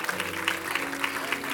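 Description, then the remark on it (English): A church audience claps together in steady, overlapping applause during a service, a dense wash of hand claps with soft rhythmic peaks and a low hum underneath, with no voices standing out. “Give them a hand clap.”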